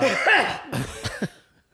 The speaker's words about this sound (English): I just gave myself the hiccups again.